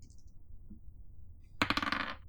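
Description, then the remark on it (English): After a moment of near silence, four dice clatter across a hard tabletop in a quick, rattling burst of sharp taps that soon settles. “So I spent 3 momentum to have 4 dice to roll.”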